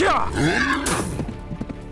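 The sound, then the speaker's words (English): A horse being mounted lets out a loud whinny that wavers and falls in pitch, followed by a burst of noise and a run of sharp hoof clops on a hard surface. “Joseph leaped over the barrels and mounted the nearest horse.”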